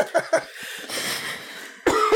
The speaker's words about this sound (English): Cough.